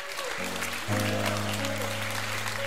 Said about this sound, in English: We welcome you to the family of God. Just give the Lord a great hand clap.